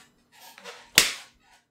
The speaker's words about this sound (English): No, I was not clap syncing again. I was trying to get that fly.